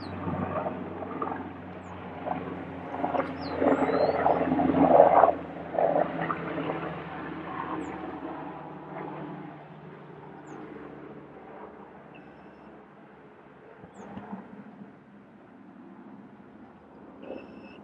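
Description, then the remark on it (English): A helicopter passing overhead: its broad, rumbling drone swells to a peak after a few seconds, then slowly fades, its low throbbing tone lingering steadily with no voices. “Oh, there's a helicopter. Pretty loud, so I'm going to wait for it to pass.”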